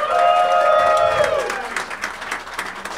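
An audience breaks into steady applause, dense clapping that holds for a few seconds, with a high whooping cheer rising over it at the start before the clapping continues on its own.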